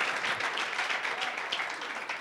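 audience applauding

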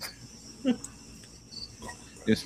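cricket chirping

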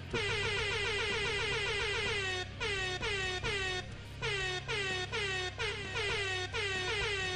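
air horn blast

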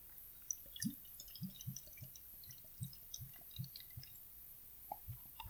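beer pouring

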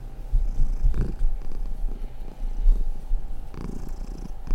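cat purring

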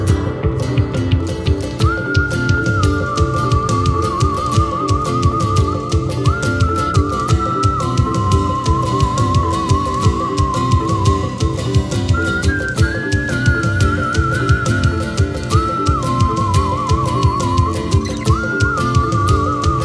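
human whistling melody

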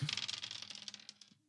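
dice being rolled

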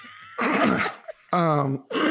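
throat clearing

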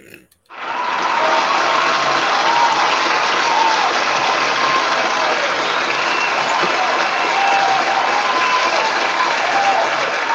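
applause

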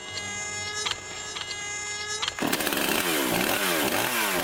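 chainsaw revving

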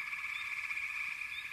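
frogs croaking

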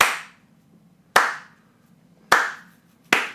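clapping

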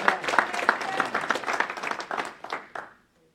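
audience clapping hands

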